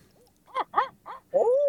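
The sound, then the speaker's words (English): A person's voice imitates an owl's hooting call as a locator call among pines at the base of a hill: a rhythmic series of four loud hoots, the last one drawn out and trailing off, with no talking. “Just let me throw an owl hoot.”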